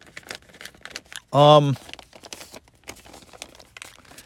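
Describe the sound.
Paper notes crinkle and rustle as they are handled and crumpled, a steady run of dry, sharp crackles, broken briefly by a short voiced hum partway through.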